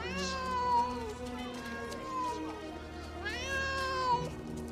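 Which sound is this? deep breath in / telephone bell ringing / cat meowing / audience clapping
cat meowing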